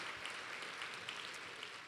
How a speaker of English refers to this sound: Would you give them a word of encouragement through your clapping, yeah. Just to let them know you're with them.